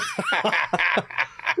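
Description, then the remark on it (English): A quick run of short, stifled coughs, close and breathy, bursting out in an uneven rhythm that almost sounds like suppressed laughter; no one speaks. “It's the worst when you have to cough, but you're in a setting where you don't want to cough.”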